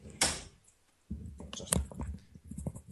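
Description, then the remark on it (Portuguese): A door that had been left open is pushed shut, with a sharp thud early on, rustling and handling noises, then a second firm knock-like impact as it settles closed. “Não é que eu tenho a porta aberta.”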